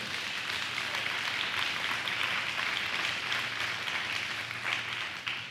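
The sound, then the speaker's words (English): An audience applauds steadily for several seconds, a dense, even wash of many hands clapping that holds its level throughout and tapers slightly at the very end, with no voices over it. “But if I ask you each one to stand up one by one, and I gave you that same speech, would you still be clapping?”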